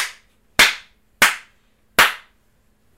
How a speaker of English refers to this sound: how many claps and snaps do you give this?